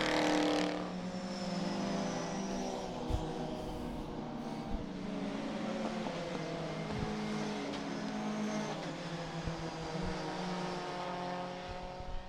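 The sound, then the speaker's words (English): A throaty Ginetta safety car engine roars past, its harmonic drone sweeping down in pitch as it goes by, loud and steady with no talking over it. “Oh, that Ginetta safety car just sounds dirty.”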